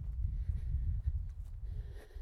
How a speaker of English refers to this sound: So already, because I'm walking up a bit of a hill, you can hear my heart rate's increased because my breathing rate's increased. And that's just from that brisk walking.